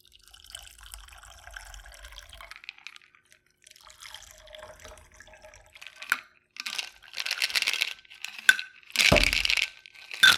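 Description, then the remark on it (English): A shaken cocktail is strained in short bursts into a glass over ice, pouring, splashing and trickling as the ice clinks and cracks, with louder pours building toward the end. “And then we strain into a glass.”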